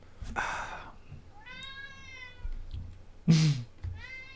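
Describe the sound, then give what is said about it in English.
A cat meows twice in drawn-out, tonal calls, fairly loud, with brief noisy rustles and thumps before and between them; no one speaks. “Cat also thinks so.”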